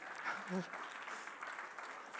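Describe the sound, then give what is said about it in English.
A crowd applauds the speaker's wife of nearly 40 years with dense, steady clapping that holds for a couple of seconds, and a brief voice or cheer rises over it near the start. “Give the woman a clap.”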